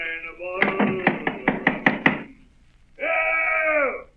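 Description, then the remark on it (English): About eight sharp, loud knocks on the door of the Admiral Benbow Inn in a quick, even rhythm over a humming tone, followed after a short pause by a sustained, wavering, voice-like cry. “Open up in there!”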